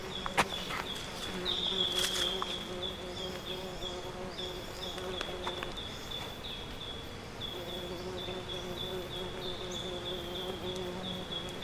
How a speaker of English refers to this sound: Hopefully that fly will go away.